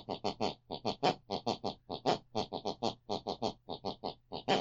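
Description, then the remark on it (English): A woman's snoring, heard through the bedroom wall from the room next door, plays a tune from the 80s music she listened to before bed. It is a rapid, rhythmic run of short snorting, snore-like grunts, each pitched a little differently so the sequence forms a bouncy tune. Loud and steady throughout, with no talking. “Picks and pulls in her unconscious mind, and that's the very tune she snores.”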